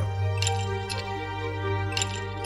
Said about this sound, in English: Toss 2 Shintara ice cubes into a hot mug.